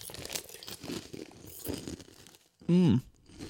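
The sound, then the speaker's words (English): One loud crunchy bite near the end, sharp and harsh with a gritty texture, after a stretch of softer rustling and murmuring voices. “would make really good eating ASMR for those who are into that sort of thing.”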